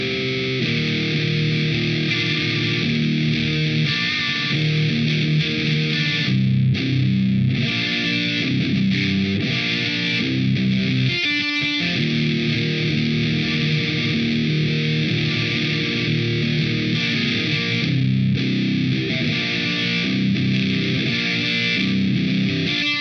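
Heavily distorted electric guitar riffing through a Friedman BE-100 high-gain amplifier, loud and continuous with dense, saturated chords and a brief pause near the middle; no voices.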